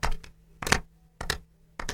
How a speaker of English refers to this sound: Then clap less loudly. Go back to clapping and clap a little softer.